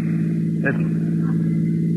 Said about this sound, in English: Listen. That sounds like cars. Probably police cars.